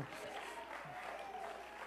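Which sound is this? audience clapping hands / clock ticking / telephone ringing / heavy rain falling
audience clapping hands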